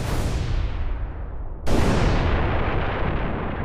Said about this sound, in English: There was an explosion off in the distance. It was so far away that the boy wasn't even sure if he heard it. The six that followed were loud enough.